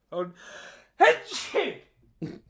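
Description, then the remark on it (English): A big, explosive sneeze rings out, with a sharp wind-up breath before it and a short follow-up sniff or exhale after. “Apologies for that massive sneeze.”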